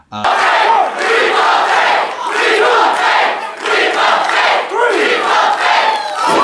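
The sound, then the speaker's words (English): A loud wrestling crowd roars and chants "Leap of Faith" in unison after a wrestler dumps an entire bag of hay on his opponent, rhythmic swells of many voices cheering continuously, with rising and falling waves of excitement throughout. “And the crowd goes crazy. The crowd starts chanting Leap of Faith.”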